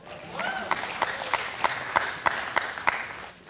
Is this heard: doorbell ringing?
no